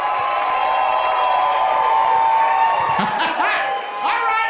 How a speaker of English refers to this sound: He's here right now. So start clapping now. Start clapping now for the comedy of Mr. Jeff Brown.